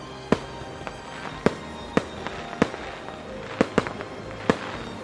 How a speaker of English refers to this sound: Wow! I didn't know there were going to be fireworks!